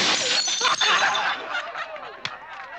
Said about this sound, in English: Mickey's older brother, Ted, in revenge as a callback to what we see earlier, he smashes their headlight.